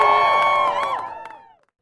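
A crowd cheers and whoops loudly, with a few scattered claps, the voices tapering off and fading to silence over about a second and a half.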